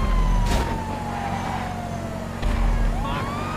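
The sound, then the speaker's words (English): A police car siren in a video game wails, gliding down in pitch and then climbing again over a steady low engine rumble, fairly loud with a couple of brief bursts of noise. “I got a cop car.”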